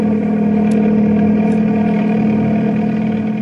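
A helicopter equipped with floats takes off, its engine droning steadily with a loud, even hum and a strong low buzzing tone, holding constant throughout with no voices.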